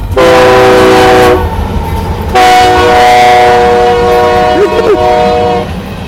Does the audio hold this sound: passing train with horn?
yes